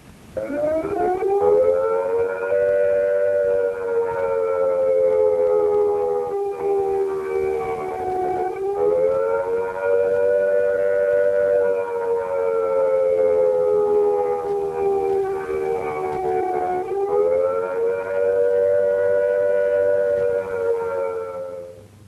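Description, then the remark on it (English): A civil defense attack warning siren wails steadily and loudly for over twenty seconds, its harmonic tone rising and falling in slow waves, with no voices present. “Take cover at once when you hear the attack sound.”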